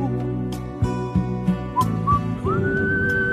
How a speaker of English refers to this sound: If you want to whistle here, you can.